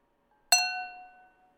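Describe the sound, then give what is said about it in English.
A single bright clink of seltzer glasses tapped together in a toast, ringing with a clear sustained tone that fades over about a second. No one speaks. “Before, I couldn't clink because the seltzer was filled up to here and it wouldn't make a sound.”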